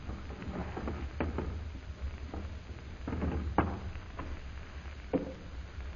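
household object, door being opened

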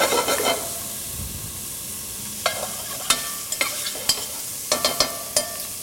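food or drink, bacon frying

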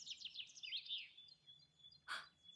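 bird, birds singing

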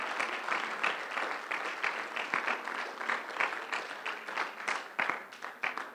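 crowd, audience hand clapping

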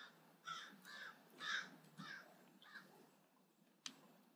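bird, crows cawing

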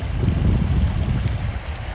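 nature, flowing creek water

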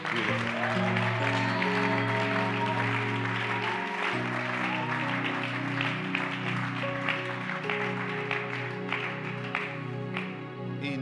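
crowd, audience clapping hands

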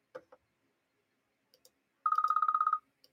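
signal or alarm, phone ringing

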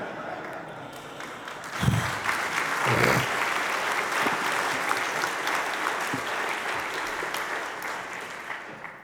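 crowd, audience applause

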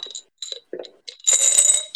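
household object, dice rattling

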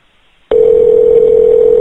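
signal or alarm, telephone dial tone

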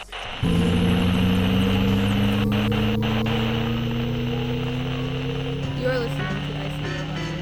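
sound effect, gong being struck

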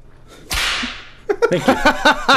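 sound effect, whip crack sound effect

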